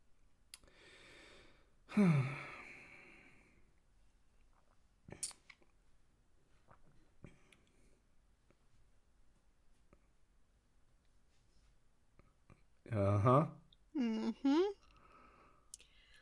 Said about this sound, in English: I love how we can hear an eldritch snoring. The eternal slumber.